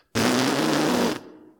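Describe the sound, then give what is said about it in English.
A steady, loud lip buzz like a brass mouthpiece buzz, made by pressing the lips together and pushing air through them, as taught to beginners on a brass instrument, held for about a second with a low, raspy pitch, starting abruptly and cutting off, with no talking. “Put your lips together. Say the letter M. Buzz. Push air through them.”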